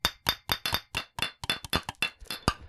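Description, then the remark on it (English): Thick glass bottles knock together over a dozen times in quick, uneven succession, each hard clack leaving a bright, ringing tone, with no talking. “These are some thick bottles.”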